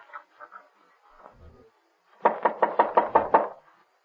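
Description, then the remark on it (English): A closed door down a hall is tried: a few soft thumps, then a quick run of about eight loud, evenly spaced knocking rattles, with no voices. “Yep, the door's closed. All right, let's open it.”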